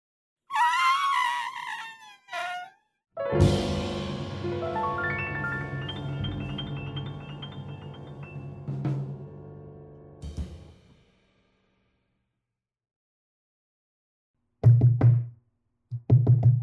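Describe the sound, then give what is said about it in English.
A mammoth's wavering, brassy trumpeting call in the distance, with sliding pitch, followed by a long, dense swell of sustained layered tones that fades out, then a few short, low, heavy thuds after a pause. “In the distance, we hear the soft trumpet of a mammoth.”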